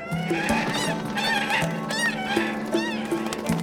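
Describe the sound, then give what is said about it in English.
Loud, harsh cries of an eagle and a swan clash in a frantic struggle as the eagle chases the swan across the sky, overlapping honks and shrill swooping screeches repeating with a steady low hum beneath; the birds hurtle downward in a mass of talons and feathers and crash to earth, heard from a riverbank. “An eagle was chasing a swan across the sky.”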